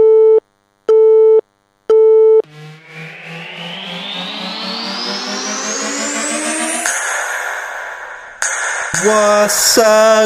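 Three evenly spaced, steady telephone busy-signal beeps at a mid pitch after a call is hung up, followed by a long rising electronic whine and a burst of glitchy, buzzing effects. No one speaks.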